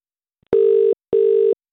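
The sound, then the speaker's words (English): Two loud, steady ringback tones, each lasting about a third of a second and separated by a short silence, as an outgoing phone call to a prize competition entrant rings on the line. Nobody speaks. “Come on. Two rings.”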